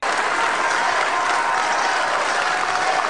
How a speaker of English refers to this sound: Yeah, that's great cheering. What's with the weird rhythm to that, huh?